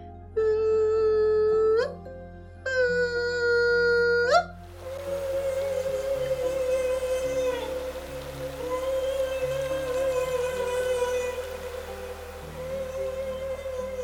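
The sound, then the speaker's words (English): A humpback whale's bubble-net feeding call, made as humpbacks blow bubbles around a school of fish: two loud harmonic cries that sweep upward at their ends, then a long, steady, moaning tone held for about ten seconds over a hissing, watery background. “They blow bubbles around a school of fish, and then one of them will begin to produce this call, and it sounds like...”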